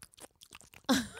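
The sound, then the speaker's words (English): A person imitates wet kissing and chewing with their mouth: a quick run of soft smacking clicks, then a louder, breathy smack with a brief vocal squeak. “Okay, so we established the kissing. What's that sound like? I'll do it.”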